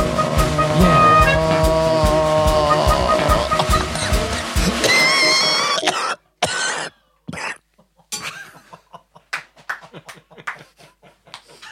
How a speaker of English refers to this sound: the clock will stop when the cough stops.